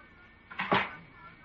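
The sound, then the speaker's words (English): A dressing-room door swings shut with a single soft, muffled thud and a short scrape, against a quiet background. “Close the door.”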